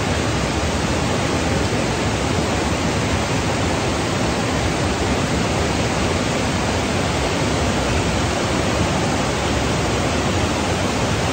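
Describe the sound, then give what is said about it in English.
A steady, full rush of river water runs continuously without pause, a dense even roar with no voices or other sounds over it. “Watch or listen to the river run.”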